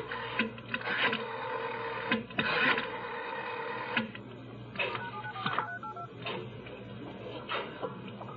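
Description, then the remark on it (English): A telephone being dialed: a run of short, clattering mechanical bursts at uneven intervals, moderately loud over a low steady hum, with no one speaking. “Who are you calling?”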